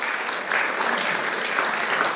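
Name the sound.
audience round of applause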